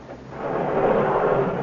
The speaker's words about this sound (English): Hey, you look at this. An elevator. Yeah, well, watch the door. There's room for the three of us.